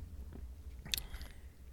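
A single short, wet sip from a drink, with a quick slurping burst over a quiet low background hum and no talking.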